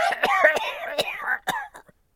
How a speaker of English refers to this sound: The old man laughed out loud, which turned into a deep, moist cough. It went on long enough to make Ejok smack him on the back in concern, and young Greenhill to come around the corner.